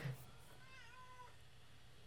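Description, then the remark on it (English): A single drawn-out cat meow, rising and then falling in pitch, fairly soft, over a low steady background hum with no talking. “Okay, I'm kind of losing steam on this one because the cats are so distracting.”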